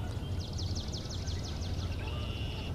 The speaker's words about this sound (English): That sound there was swamp sparrow, that da-da-da-da-da-da-da kind of, like a slow ringing bell, like a school bell kind of thing. They are very similar to a pine warbler this year.